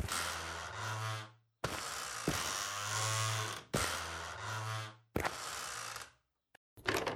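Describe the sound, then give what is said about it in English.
A stuck attic door is rattled hard in several loud, harsh bursts with short pauses between, a grinding, clattering mechanical sound like a latch jerking against its frame, with no talking. “It's stuck.”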